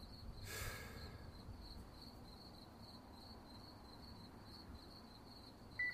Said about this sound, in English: I took another drag and noticed the silence. The only noise out here were the crickets. So peaceful.